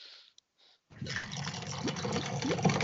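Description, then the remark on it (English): Beer pours into a glass, loud and gurgling, with a rising fill sound after two brief fizzy hisses at the start. No one speaks. “Still that loud? Yeah. Very loud. Wow. This is a good microphone over here.”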